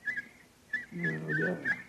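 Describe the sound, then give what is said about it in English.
A person in Sussex whistles a string of short, bright chirping phrases, imitating a nightingale's song as a call for help, moderately loud, with a low murmur rising beneath the later notes. “My whistle is that of a nightingale, a song unheard in Sussex at this time of the year.”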